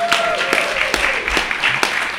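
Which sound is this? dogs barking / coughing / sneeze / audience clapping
audience clapping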